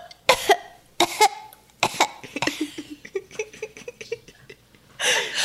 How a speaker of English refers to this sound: So it's a bit smoky, which is also why they kind of keep the windows open. Ylaris Jr. coughs. Please give us some Foley work for that.